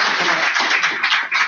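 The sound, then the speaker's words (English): A crowd breaks into sustained applause for Sheriff Leonard, a dense, steady wash of many hands clapping at once, loud and continuous with no voices standing out. “So everybody, could you please give a round of applause for Sheriff Leonard?”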